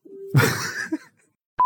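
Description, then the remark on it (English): Beep tones marking an edit point in a recording: a low, steady electronic tone gives way to a burst of rough, noisy sound, then after a short silence a brief, higher-pitched beep cuts in sharply at the end. “So if we just give him a chunk to just chop out and say things on the recording, like, you can just chop everything from here before out. Beep, beep.”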